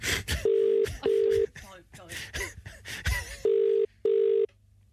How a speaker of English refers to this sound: Phone ringing. Who is it?